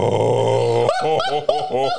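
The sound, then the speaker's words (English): A loud, sustained air horn blast lasting about a second, followed by a rapid series of shorter, pulsing horn-like bursts from a voice imitating the air horn. “Get air horns.”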